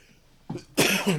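A person coughs twice, a short soft cough followed by a louder, harsher, raspier one that trails off, with no talking; they cough because they have only ice and not enough water.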